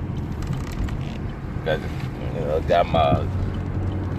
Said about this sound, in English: Got my car windows down and just enjoying the air, because I live in Louisiana, Baton Rouge, Louisiana.